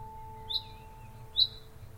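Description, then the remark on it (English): Outdoors in the morning, two short, bright bird chirps sound about a second apart, fairly clear against a quiet background with a faint steady hum and low rumble. “Outside, birdsong holds a tuning fork to morning.”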